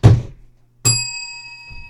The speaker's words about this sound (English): I love the bell. That's amazing.